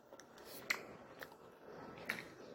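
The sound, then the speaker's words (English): Quiet chewing while eating lunch, with a few crisp, crunchy bites and clicks popping out at irregular moments over a soft, steady background. No voices. “You're gonna hear my ASMR while I'm eating lunch.”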